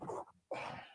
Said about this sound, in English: I'm a big sneezer too. I can never sneeze more than less than two or three times in a row.